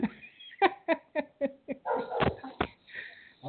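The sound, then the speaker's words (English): Puppies bark in a quick run of five or six short, sharp yaps, followed by rougher, scuffling yelps, heard somewhat in the background. “I hear the puppies back there barking, so it's good to hear always.”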